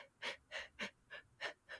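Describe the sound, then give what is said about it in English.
A person breathes in quick, shallow gasps, six short airy breaths in rapid succession at a steady rhythm, fairly quiet, with no talking. “Or are you breathing like this?”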